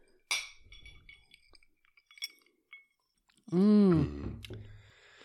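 cocktail glasses clinking

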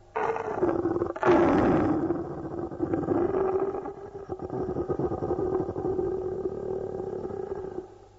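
lion roaring

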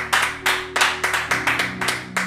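audience applause

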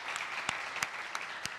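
round of applause

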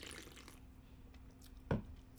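sipping beer

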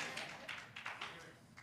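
audience clapping

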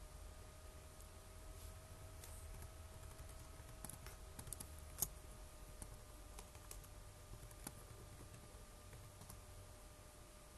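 computer mouse clicking

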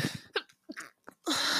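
sneeze

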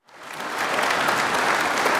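applause

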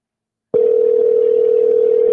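phone call ringing unanswered

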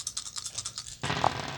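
dice being rolled

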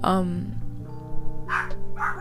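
dogs barking

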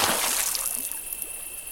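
water pouring

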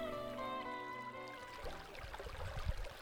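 river water flowing

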